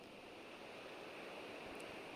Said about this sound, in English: Let's take a pause. Can you hear the flowing in and the flowing out of the ocean?